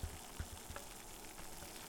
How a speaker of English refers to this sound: The water here is just starting to boil.